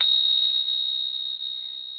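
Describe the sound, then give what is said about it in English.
A handheld chime rings out after a single strike, holding one bright, high, pure tone that sustains steadily and fades only slightly over two seconds, with no voices alongside. “For those of you that can see it, you can see I'm holding chimes.”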